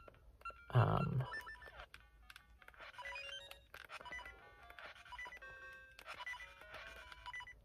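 A video game's low-health warning beeps repeatedly in a steady, high-pitched electronic pattern over busy chiptune-like game music, with a brief loud thump near the start and no talking, while the player looks for a heart to restore health.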